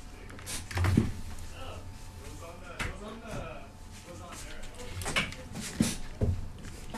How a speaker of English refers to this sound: What you're listening to right now actually is the sound of the CITR outside. So I'm just going to close the door.